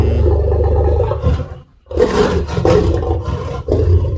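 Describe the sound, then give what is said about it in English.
A lion at a South African game reserve roars loudly at a worker, warning him to stay away from its mate: deep guttural bursts with a brief pause between them, the rumbling calls repeating with no one talking. “Anyway, so this particular lion's roar sounds vicious.”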